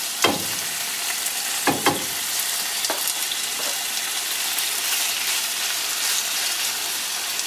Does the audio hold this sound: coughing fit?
no